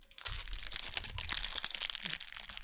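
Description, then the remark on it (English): Continuous crinkling and crackling of a plastic wrapper of leftover Halloween candy being handled while someone eats the candy, dense bursts of rustle for a few seconds with no talking. “No, the studio's not on fire. It's leftover Halloween candy.”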